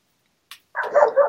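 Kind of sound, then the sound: animal, dog barking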